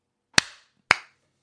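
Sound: hand clap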